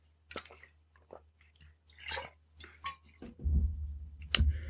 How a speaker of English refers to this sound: Now, excuse me, let me get a drink of water.